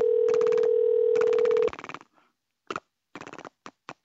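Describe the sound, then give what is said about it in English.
A voice imitates rotary phone pulse dialing, holding a steady hummed tone under fast clicking bursts, then sputtering out a few separate short runs of rapid clicks, fairly loud. “Been working on my impression of a rotary phone pulse dialing, and it goes gross.”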